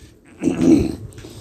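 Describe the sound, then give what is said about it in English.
A big ape in a forest lets out a single short, deep roar, a rough guttural growl that swells up loudly and fades within about half a second, with no talking. “All of a sudden, in the forest, all of a sudden, a big ape lets out a roar.”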